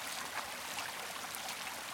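A waterfall's steady, hissing rush of falling water and a flowing stream, continuous and even throughout, with no voices or other sounds breaking through.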